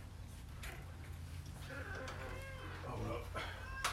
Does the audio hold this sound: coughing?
no